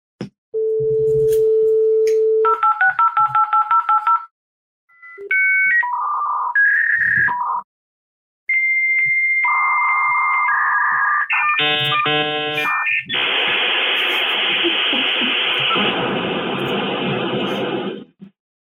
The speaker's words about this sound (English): This goes back to my youth. That yes. would be a modem connecting online, often to a BBS, bulletin board service, like a CompuServe, right? Absolutely. Yes.